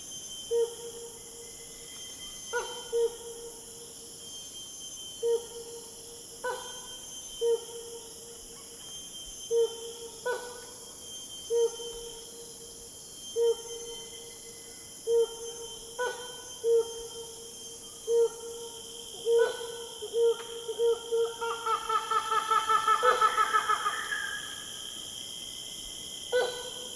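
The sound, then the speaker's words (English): Calls of some helmeted hornbills on the island of Borneo: evenly spaced, ringing hoots repeat for a while, then quicken into a rapid, cackling burst, over a steady background of buzzing insects. “Here are the calls of some helmeted hornbills on the island of Borneo.”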